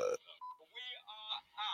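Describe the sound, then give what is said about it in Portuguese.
A mobile phone gives off a quick series of short electronic tones and buzzy bursts, several in a row with brief gaps, fairly quiet. “Acho muita piada que o meu telefone começou a fazer barulho porque sim.”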